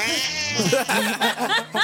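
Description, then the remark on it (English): A cat meows fairly loudly: one long, wavering cry followed by a quick series of shorter, arching meows. “This is the stupidest thing he's done since he got in a turf war with that cat.”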